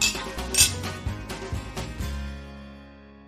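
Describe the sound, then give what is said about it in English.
Several bright, fairly crisp clinks of glasses touching in a toast, spaced irregularly over a few seconds, with a ringing tone that fades out at the end. “Well, I think it's a cheers to that. Let's. Cheers.”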